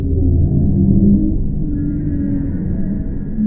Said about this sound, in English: And then the bowhead whales, roaring, low frequency moans.